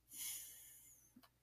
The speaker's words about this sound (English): I'm breathing my air, but I smushed my nostrils.